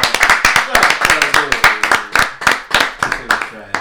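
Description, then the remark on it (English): An audience claps in a brisk, steady burst of sharp, loud hand claps lasting several seconds, with voices talking and calling out beneath the clapping. “Clap it up. Clap it up.”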